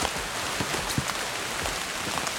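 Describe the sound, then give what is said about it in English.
Steady rain falls in autumn woodland, a dense continuous patter with scattered louder drops hitting leaves and surfaces. Nobody speaks. “Wish it wasn't raining.”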